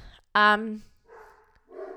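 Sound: dogs barking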